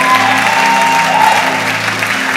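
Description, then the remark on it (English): An audience applauds loudly in praise of God, a dense, steady wash of clapping that holds for a couple of seconds, with faint sustained low tones humming underneath. “What that will do, that will, come on, give God a praise, come on.”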